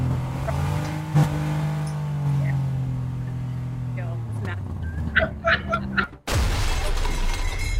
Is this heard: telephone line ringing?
no